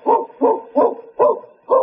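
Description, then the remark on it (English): A dog barks five times in a steady rhythm, each bark a loud, mid-pitched woof with short pauses between. No one speaks. “I hear a dog.”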